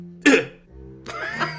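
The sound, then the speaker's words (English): A sharp cough bursts out, followed about a second later by a longer, rougher cough that trails off with a throaty rasp. No talking. “Oh, that was my cough.”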